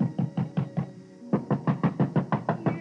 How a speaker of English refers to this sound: I got his address, hopped into my car, and drove back to Danbury. But ringing his bell and pounding on his door got me nothing.